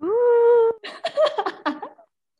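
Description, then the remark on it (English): A human voice imitates a ghostly moan: one long, steady wail, then a run of short, broken whimpering yelps, fairly loud, before it cuts off. “Are you trying to imitate a ghost sound or a dog suffering in pain?”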